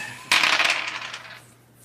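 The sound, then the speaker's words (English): Six-sided dice, including a differently colored luck die, clatter across a hard table, a sudden bright rattle that tumbles for about a second before settling into quiet. Fairly loud, with no talking over it. “Can I add a luck dice to it? Do a luck dice?”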